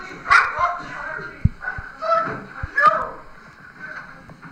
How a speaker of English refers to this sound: There's the dog.